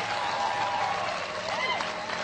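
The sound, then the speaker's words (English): Sustained audience applause, a dense steady wash of many hands clapping at even loudness throughout, with faint crowd voices and a few whoops mixed into the clapping. “Get old man a round of applause.”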